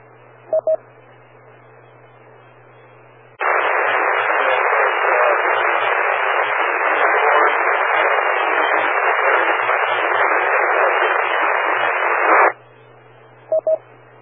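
A loud, steady hiss of ham radio static fills about nine seconds during a radio net check-in, opening and cutting off abruptly, with brief electronic beeps just before and after it.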